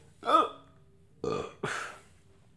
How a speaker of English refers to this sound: Excuse me, I have to burp.